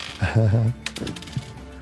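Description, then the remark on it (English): A brief voiced sound, then a few sharp clicks and clatters as dice tumble and settle on a hard surface, fairly quiet and irregular. “Roll 1. Come on, dice.”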